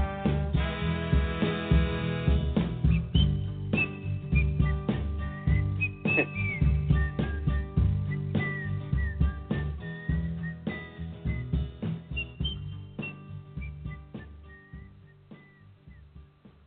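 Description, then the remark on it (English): Someone whistles a slow, wandering song melody, clear, carried over a full band backing with steady drums and bass throughout. “Love the whistling”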